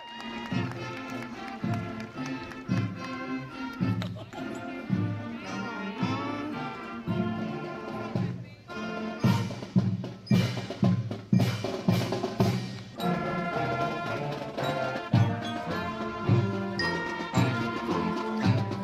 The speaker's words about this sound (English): let's do our first visit to San Jose, California, to Herbert Hoover Junior High, where outside in the street, the band is performing, right outside of the school you remember so fondly. Please welcome, from Merced, the Hoover Huskies Marching Band.